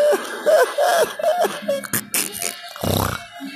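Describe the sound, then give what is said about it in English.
A harsh coughing fit: strained, voiced hacking sounds running together, then a couple of louder, rougher coughs toward the end. “Ooh, I was coughed up a storm right there”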